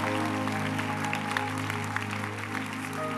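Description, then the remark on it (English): An audience claps hands for Jesus in a steady, dense patter, the sharp claps blending into a continuous wash over sustained musical tones that hum underneath throughout. “Lord, are you clapping your hands for Jesus?”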